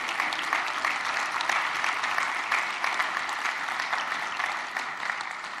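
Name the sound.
audience clapping in praise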